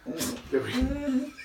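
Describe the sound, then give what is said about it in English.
A show dog whimpers while sticking her head through a cat door, with a few sharp yips mixed in, a wavering, whiny sound that carries on steadily for about a second and a half. “That's show dog Lola. Sticking her head through the cat door.”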